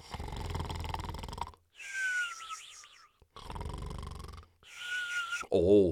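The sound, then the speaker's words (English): A voice imitates loud snoring: two rough, rumbling snores, each followed by a high whistling exhale, ending with a short gurgling snort, portraying the story character Lumberjack snoring in his chair in a log cabin in the woods. “That wasn't a bear. Oh, no, that was Lumberjack snoring.”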